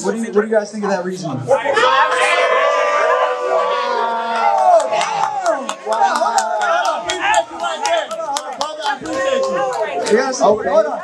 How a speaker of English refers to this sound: I heard mixed cheering in the first part, and they switched up on you.